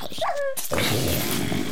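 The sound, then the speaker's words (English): A dog makes a short, high whining yelp, then breaks into a rough, sustained, rumbling growl that stays fairly loud for over a second, with no talking. “Stay away from my dog.”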